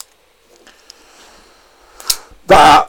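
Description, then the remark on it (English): A couple of sharp, quick pen clicks sound after a near-silent stretch, followed by a louder burst as a voice begins talking at the very end; the clicking pen signals the end of the predictions for the coming week's games. “The sound of the clicking pen means that is all the games predicted for the coming week.”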